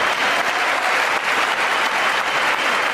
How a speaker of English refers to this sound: Okay, so he gets a little applause.